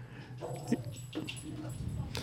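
A dog gives several short, high yips and barks in quick succession at moderate volume, with a low hum and faint voices underneath.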